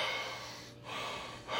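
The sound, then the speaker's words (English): A voice imitates the heavy breathing of Jason from Freddy vs. Jason, with two long, rasping breaths of air separated by a short pause, and no words spoken. “just breathing heavy.”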